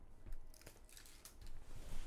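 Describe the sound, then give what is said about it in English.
A piece of paper is grabbed and handled for a game of MASH, with a few short, crisp rustles and crinkles scattered over two seconds against a quiet background. No one speaks. “Let me grab a piece of paper.”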